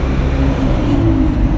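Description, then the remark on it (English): A car driven by a woman rushes past, a loud, steady low engine rumble with road noise that holds for the whole moment, no voices. “She whips by in the car.”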